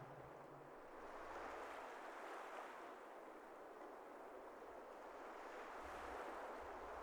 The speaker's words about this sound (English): As you stand on its edge, and stare out into its waves, its salty peace envelops you.